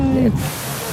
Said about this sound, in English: So here I am outside the Trevi Fountain. It's a lot of water flowing over a lot of stone.